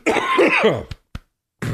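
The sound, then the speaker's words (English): A long, rough, hacking cough that sounds like clearing the throat, followed by two short sharp coughs and a brief pause before another rasping cough begins, as a person coughs up bong water. “No, that's bong water I just coughed up.”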